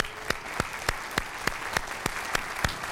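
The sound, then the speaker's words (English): An audience claps in unison during a sermon at the preacher's request, with about ten sharp, evenly spaced claps in a steady quick rhythm over a constant murmur of crowd noise. “Just to give you a break in the intensity of this message, why don't you clap once? Do it now.”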